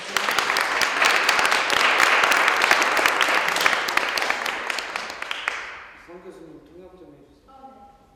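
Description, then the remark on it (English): A crowd applauds the performers loudly with dense, steady clapping for about five seconds, then the applause fades out and a single voice begins speaking. “Let's give the performers a round of applause and welcome them.”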